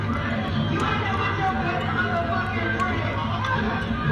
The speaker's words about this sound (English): See how loud it is? Now that's what you hear from, like, just imagine being in the club.